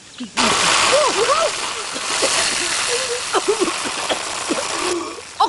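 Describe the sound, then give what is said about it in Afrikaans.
A garden hose suddenly bursts into a loud, steady spray of hissing water that lasts about five seconds before cutting off, soaking the person who was peering into the hose, with a voice crying out and exclaiming over the rush. “Wat spuit jy jouself so nat?”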